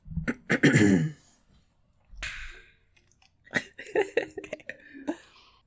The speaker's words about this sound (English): Except I gotta clear my throat a bit. I gotta get a sip of coffee.